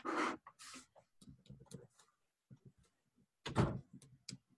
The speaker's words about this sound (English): Ka-chunk. I like that you could actually hear the door. We got some great Foley on this show, you guys.